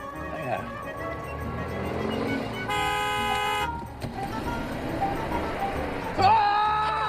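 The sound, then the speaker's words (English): A loud car horn sounds one sustained honk lasting about a second at a traffic light, set against busy street noise with people talking around it. “Somebody beeped you.”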